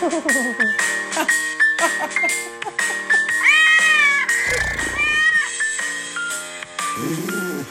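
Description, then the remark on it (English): A cat meows repeatedly in drawn-out, rising and falling cries, fairly loud, with a brief burst of rustling noise partway through and continuous harmonic wailing throughout. “Good cat. Good cat.”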